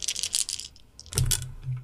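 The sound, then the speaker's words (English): Ten-sided dice, rolled for a skill check in a tabletop roleplaying game, rattle briefly in a hand or cup, then clatter and tumble across a hard table in a quick burst of clicks and knocks, fairly loud, with no talking. “So roll me panache plus convince, please.”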